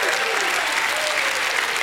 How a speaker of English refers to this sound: Somebody in the house, give him a hand clap and a shout of praise.